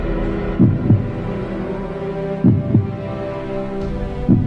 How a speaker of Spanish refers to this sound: 50.000 cors bategant a l'uníson i milions de seguidors amb set de victòria i amb fam de rècord.